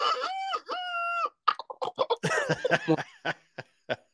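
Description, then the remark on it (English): A voice imitates a rooster's crow in a drawn-out, two-part call, followed by a rapid string of short, choppy vocal bursts like laughter or coughing, clear. “And I even done a rooster.”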